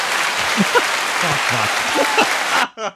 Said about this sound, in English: Hey, at least I got a hand clap too.